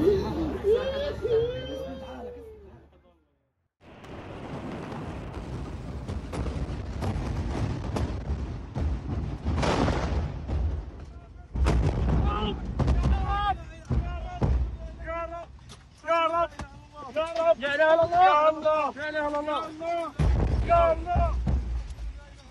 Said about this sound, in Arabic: كنا داخل هذا الإسعاف يا جماعة، تم استهداف فار الشارع بحزام ناري بشكل كبير، والحمد لله.